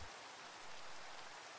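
Steady rain falls in a continuous, even hiss of dense droplets, with no gaps or talking. The broad, soft patter holds a constant level throughout.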